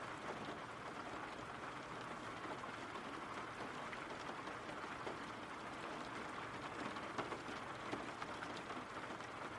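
Steady rain falls without a break, a dense, even hiss of drops across the whole clip, with small pattering spikes here and there and no voices.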